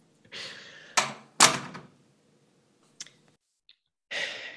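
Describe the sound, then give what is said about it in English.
A bathroom door swings shut with two solid thuds, followed moments later by a couple of small sharp clicks as it is locked, framed by soft breathy exhales. “Also, he closes the door and like locks it.”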